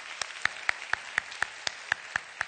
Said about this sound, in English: Come on, give her a hand clap right there.